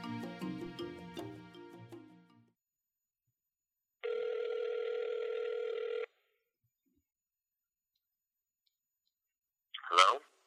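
A phone call being placed: a quick run of dialing tones, a pause, one steady two-second ring tone, then silence broken by a sharp click as the line picks up.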